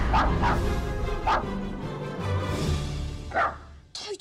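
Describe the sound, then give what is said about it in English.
A small dog yaps a handful of times, sharp high-pitched barks in short bursts with uneven gaps, over a soft low musical hum. “He was a little black dog with long silky hair.”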